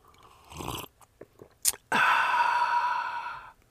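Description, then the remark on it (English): Faint lip and mouth clicks, a quick wet sip, then a long airy slurp of coffee at 5:30 in the morning, lasting over a second and a half, steady and hissing before cutting off. No talking. “And now you're going to hear me take a sip of coffee and slurp just a little.”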